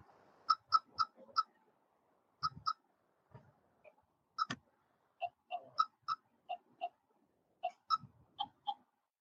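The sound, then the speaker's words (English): A rapid series of short, crisp app interface clicks plays as a list of previously used chats or commands expands, about twenty sharp ticks in uneven bursts, each with a bright, slightly pitched tone, with no talking. “So those clicking sounds that you hear is a list of chats or list of commands that we used before that is expanding.”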